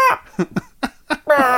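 A chicken clucks: a short squawk, then three quick, choppy clucks, ending in a longer, loud drawn-out cackle with no talking around it.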